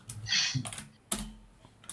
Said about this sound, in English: Can you hear him opening? Can you hear his mouse and the keyboard?